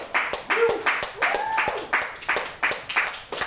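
A small group claps steadily for a few seconds, the claps loud, uneven and overlapping, with a couple of brief high whoops rising over the applause.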